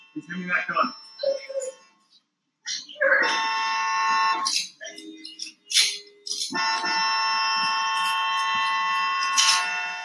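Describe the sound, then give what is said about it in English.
A car horn honks in two long, loud, sustained blasts, the second held for several seconds, with a brief stretch of voices at the start before the honking begins. “There's a police officer there. Why are you honking?”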